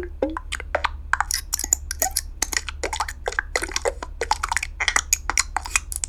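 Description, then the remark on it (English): A rapid run of short, crisp designed button sounds for a Yahoo widget: bright clicks and droplet-like, glassy blips in an uneven rhythm, each brief and snappy, over a steady low hum. “So typically what I do is I create a bunch of button sounds. These are would-be buttons for a Yahoo widget.”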